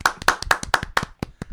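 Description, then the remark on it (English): Audience clapping: a short run of crisp, sharp hand claps in a quick, slightly uneven rhythm, about a dozen in under two seconds, with no voices over them. “I'm going to say keep clapping.”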